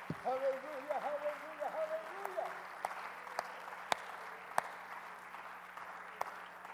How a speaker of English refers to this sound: Let's clap our hands for the Word of the Lord, shall we?